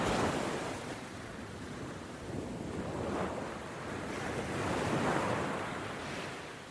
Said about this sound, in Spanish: Las aguas desiertas golpeaban la costa.